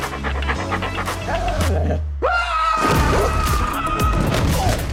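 A large dog, Clifford, pants heavily and rhythmically in New York, its loud breathing continuing throughout, with a few dull thumps and a brief crashing sound partway through.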